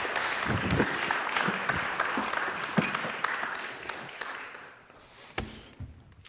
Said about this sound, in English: Thank you very much, both of you. Can we give them a round of applause for getting through all those names?